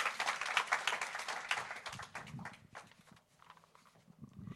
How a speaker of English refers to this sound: So a round of applause for my mum, please.